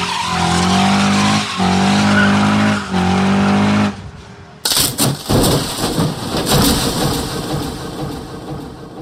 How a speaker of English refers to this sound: And if you think it's fun watching two football players run into each other head first at 20 miles an hour, how about 20 cars crashing into each other at 180?